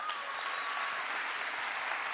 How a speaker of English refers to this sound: So thank you for being here. Can you give yourselves a round of applause?